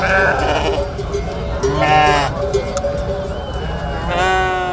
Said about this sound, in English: And finally, in the Spanish capital of Madrid on Sunday, cars were replaced with sheep.